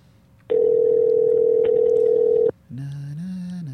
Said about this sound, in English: Let's see if we could bring him back for the last couple of minutes. Let's see if the millennial answers his phone.